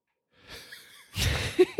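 A person yawns: a long breathy inhale that swells into a louder open-mouthed exhale, ending in a couple of short voiced murmurs. No one speaks.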